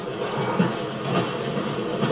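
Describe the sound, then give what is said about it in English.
A steady, continuous rumble of a train in motion, played inside a simulated bright green wooden train carriage with leather seats and a TV screen as its window, in the library of a residential village, with an even, moderately loud drone throughout. “Here in the library, there's a bright green wooden train carriage complete with leather seats and what looks like a window inside, but which is in fact a TV screen.”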